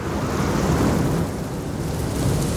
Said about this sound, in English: That was a loud explosion. Oh, it got louder.